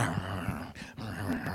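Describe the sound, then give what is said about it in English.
A voice imitates a dog's low, rumbling growl while it chews a bone, a steady grumble lasting under two seconds with a brief dip in the middle, no words spoken. “The way a dog chews a bone. You ever see a dog chew a bone?”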